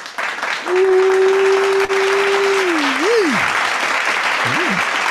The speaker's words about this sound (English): Hit me with an applause, brother. Hit me with an applause or something.